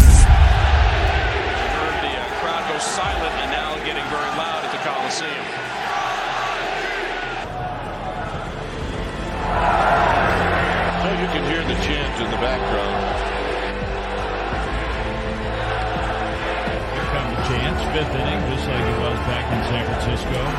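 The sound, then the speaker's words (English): A large baseball stadium crowd at an A's game in the fifth inning roars and chants continuously, a dense wash of many voices that swells slightly partway through and stays loud and sustained to the end. “As you can hear, the cheer has gone from coast to coast and has reached our nation's capital.”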